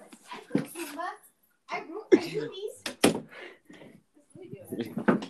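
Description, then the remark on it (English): A door shuts with a single solid thunk partway through, while a child and others chatter around it. “She'll probably be closing the door.”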